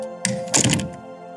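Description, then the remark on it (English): The door of a college nursing department office swings shut with a soft latch rattle followed by a solid, low thunk, then quiet with a faint steady hum underneath. “Ashwini waved at her before she closed the department's door.”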